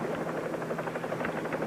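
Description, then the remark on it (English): Steady helicopter noise: a dense engine roar with a fast, regular thumping of rotor blades running throughout, with no voices. “Longwood Field, helicopter 38 Bravo. Come in, please.”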